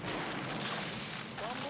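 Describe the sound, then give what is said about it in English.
Steady, dense rain hiss with a deep rumble of thunder rolling underneath, loud and continuous throughout, with a brief voice-like tone surfacing near the end. “Ooh, thunder and lightning. And rain.”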